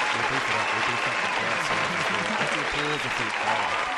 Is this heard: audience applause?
yes